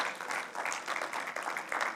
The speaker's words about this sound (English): Wasn't that worship incredible this morning? Can we give a cheer to our worship team?